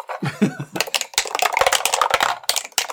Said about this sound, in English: I want to roll dice.